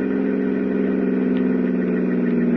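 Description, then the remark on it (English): A car engine hums steadily at a low, even pitch, fairly loud, as the car slows down, with no voices present. “I slowed the car as I planned all my moves.”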